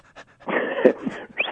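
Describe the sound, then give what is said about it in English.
A person imitates a sheepdog, panting like a dog: breathy, rapid huffs with a few whiny vocal squeaks, moderately loud, with no talking. “I'm your sheepdog again. Give me the commands and I'll tell you what I'm going to do.”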